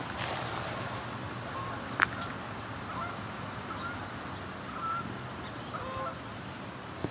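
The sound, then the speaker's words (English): Canada geese honking as they come in and land on a river, a few scattered calls rising over steady outdoor background noise, with a sharp click or knock partway through. “Comes some Canada goose.”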